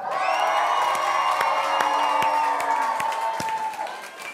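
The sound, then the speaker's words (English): A large crowd of students, sophomores, juniors and seniors at H12, erupts in sustained cheering, yelling and whooping to welcome freshmen, a dense wall of voices with scattered sharp claps, staying loud throughout before easing slightly at the end. “So on the count of three, I want you to shout, yell, stand up, go crazy for these freshmen.”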